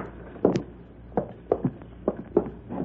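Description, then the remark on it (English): A door latch clicks as someone opens the door and walks into a house: a series of about six or seven moderate footsteps thud across a hard floor at an unhurried, slightly uneven pace, with no voices. “Open the door and walk right in.”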